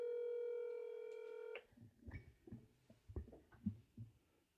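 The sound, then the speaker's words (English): A steady electronic phone-keypad tone holds for about a second and a half as a call to a mother is dialled, then cuts off into a series of soft, muffled taps and thumps, with no talking. “Calling my mommy.”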